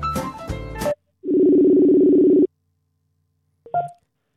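A short burst of music cuts off, then a steady telephone tone hums loudly for just over a second as a call is placed, followed by silence and a brief faint click near the end.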